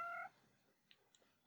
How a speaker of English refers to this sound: So this is one of my only male cats we have. It's the luck of the draw, and his name is Titty, which we thought was endlessly hilarious. Now I have regrets. His real name is Titus, to be fair, and we just nickname everything, so it turned to Titty.